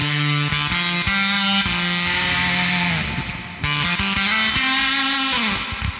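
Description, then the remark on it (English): Electric guitar chords played through a Big Muff pedal ring out with heavy reverb set at 2 o'clock and a gritty, saturated tone. Each strum blooms and sustains into a washy tail. The playing is loud and continuous, with no voices. “So that's a lot of reverb, and it doesn't go too crazy.”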